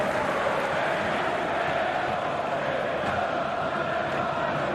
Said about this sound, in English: you sound like a football crowd. Yeah, come on, make some flipping noise.